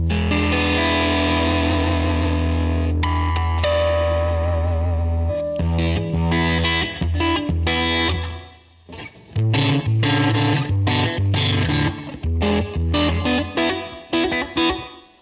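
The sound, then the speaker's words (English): A loud electric guitar drenched in reverb from a Levitate reverb pedal: a sustained, ringing chord for several seconds, then choppy rhythmic strums and short chord stabs with a washy tail. No one speaks. “Anyway, that reverb is coming from the levitate.”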